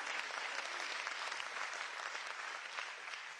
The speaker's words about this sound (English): And I'm so thankful for grace and mercy today. Can you clap your hands and let him know you're thankful?